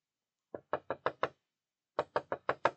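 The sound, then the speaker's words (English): Mortimer knocks on a door in two quick bursts, five sharp raps each with a short pause between the groups, clear with no voices. “Mortimer knocked, but no one answered.”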